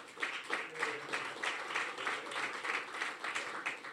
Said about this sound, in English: I am so glad you applauded for that, because the next line is going to not be an applause line